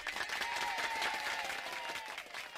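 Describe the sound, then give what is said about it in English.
A large crowd cheers and applauds in a dense, steady roar of clapping, with a few high whistles and shouts rising above the wash of noise throughout. “Listen to that crowd.”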